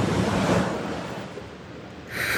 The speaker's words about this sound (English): It is so good to hear ocean waves